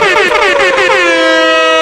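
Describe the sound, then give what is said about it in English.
Several loud air horns blare together in a dense, overlapping wail, their pitches sliding and wavering before settling into a sustained, steady blast that holds to the end. “Fire off all the air horns.”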